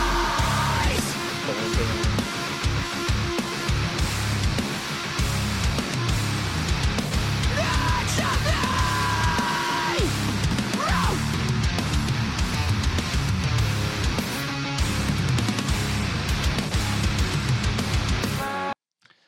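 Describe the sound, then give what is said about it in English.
Loud, dense distorted music plays throughout, with a harsh screaming vocal cutting through the mix around the middle, before the track stops abruptly near the end. “Just like it's just like a scream.”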